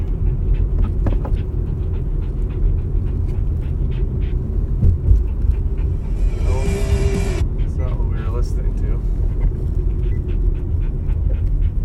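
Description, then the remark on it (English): A dog named Charlie pants steadily and rhythmically over a constant low engine-like rumble, with a brief brighter burst of noise partway through. “Okay, Charlie, you're panting pretty good there, buddy, old pal.”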